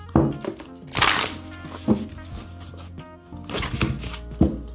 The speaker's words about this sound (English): Let me shuffle these cards real quick.